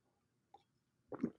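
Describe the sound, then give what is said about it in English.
A single light clink of glasses in a toast, then a brief, louder wet sip or gulp of a winter warmer beer. No one speaks, and the moment is otherwise quiet. “We'll go silent for a cheers.”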